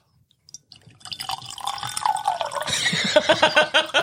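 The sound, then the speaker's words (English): Whisky glugs steadily into a Glencairn glass, a continuous burbling pour lasting a few seconds with a pitch that climbs as the glass fills. No one speaks. “Hand me your Glencairn glass, and we'll fill her up.”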